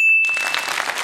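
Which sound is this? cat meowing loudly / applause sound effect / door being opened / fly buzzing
applause sound effect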